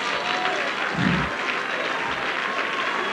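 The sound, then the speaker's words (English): An audience claps their hands in a steady, dense wash of applause that fills the whole clip, with a brief low thump just after the first second. “Would you clap your hands again?”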